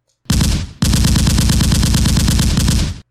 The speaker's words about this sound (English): Someone was firing a machine gun. Even with my vague fly hearing, I could hear the air shaking with the noise. Hundreds of rounds were being fired inside the store.